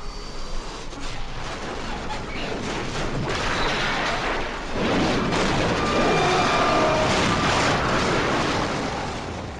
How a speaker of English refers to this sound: Suddenly, the engine sputtered as if it were catching, and Oliver had just enough time to grab the stick in hopes of pulling it out of the dive before it died again, and he and the machine slammed into the ground.